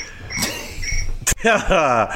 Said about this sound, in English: Oh, there it goes. Fucking cricket.